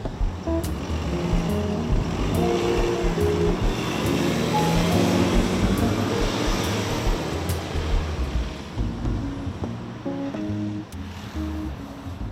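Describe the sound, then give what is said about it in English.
A large diesel city bus, the last bus of the route, pulls up at a stop and idles and rumbles, its engine droning steadily with a low, throbbing tone while faint traffic noise washes in the background. “Yeah, so the 5:10 just pulled up at 2:05, and this would be the bus I get on to keep going to Mopar, the last bus.”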